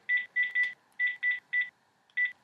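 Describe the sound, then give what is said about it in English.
A quick series of about eight landline phone keypad dialing tones, short clear beeps in an uneven rhythm with a brief pause near the end, heard alone, as a mobile number is dialed. “So I'm going to dial my mobile number.”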